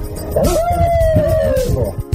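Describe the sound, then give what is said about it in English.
Children playing in a den howl like wolves, one long wavering howl rising and falling for over a second, loud, with scattered lower yelps and rustling noise around it. “You guys are like little wolves in there.”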